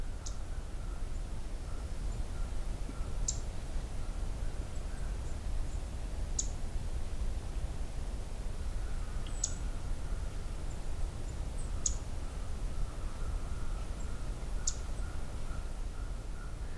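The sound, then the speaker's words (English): A male black-throated green warbler gives sharp, high chip calls, about six of them spaced a few seconds apart, over a steady low outdoor rumble with no one talking. “Yeah, it's black-throated green that's actually doing the vocalizing.”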